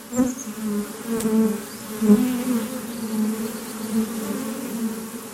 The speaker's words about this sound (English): There are hundreds of thousands of bees in this apiary.